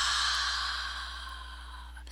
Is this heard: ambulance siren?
no